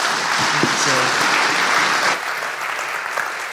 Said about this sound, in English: And as you're in the mood of clapping, could you clap once again?